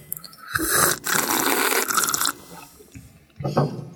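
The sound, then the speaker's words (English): Loud, wet slurping of chicken broth into a microphone: one long noisy draw of about two seconds with a brief break, a quiet pause, then a second shorter slurp. “We have to slurp into the mic, okay?”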